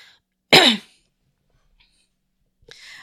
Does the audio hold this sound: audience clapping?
no